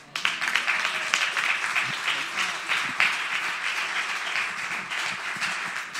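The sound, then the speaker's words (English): An audience claps steadily for several seconds for a pastor and teacher, a dense, sustained wash of many hands at a fairly loud, even level with no talking over it. “First of all, can we clap for the person who is equally as gifted as a pastor as he is as a teacher?”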